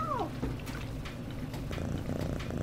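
A single short meow from a female cat being caught with an empty laundry basket, falling in pitch, followed by a steady low purring that continues for the rest of the moment.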